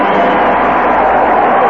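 A standing crowd at Anaheim Stadium cheers Nolan Ryan's record 383rd strikeout in a loud, steady roar, a dense wash of many voices sustained without a break, with no single voice standing out.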